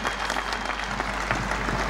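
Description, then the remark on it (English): Sustained applause from a large crowd during a recorded speech, coming just before the line 'Mr. Gorbachev, tear down this wall': a dense, steady wash of clapping at an even level throughout, with no voices rising above it. “And, it's a big line after this applause.”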